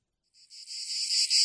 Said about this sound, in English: Yeah, that's worse. That sounds more like it's at night. Yeah. What is that? Frogs? It's labeled as cicada sounds. I think I hear some katydids in there, some crickets.